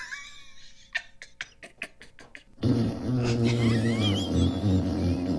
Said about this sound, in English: That was a long and crispy one. Would you like me to play another fart sound?